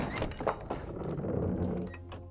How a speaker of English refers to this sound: Weak from exhaustion, infection, and atrophy, Geppetto was barely able to push open the doors.